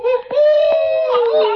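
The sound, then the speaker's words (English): A single drawn-out, high wailing howl that rises slightly and then slowly falls in pitch, sustained and fairly loud for under two seconds, sounding like a human voice imitating a coyote. “Gee, coyotes.”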